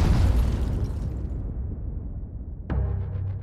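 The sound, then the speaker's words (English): A deep, rumbling explosion boom from a meteor exploding 14 to 17 miles above Chelyabinsk, Russia, rolls in loud and low, fading over a couple of seconds before a second sharp blast cracks out near the end. “South of Chelyabinsk, near the border between Russia and Kazakhstan, and at 14 to 17 miles above the city, the meteor exploded.”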